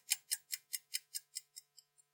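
A rapid run of about ten crisp, evenly spaced ticks, like a clock ticking fast, gradually fading away over two seconds with no voices.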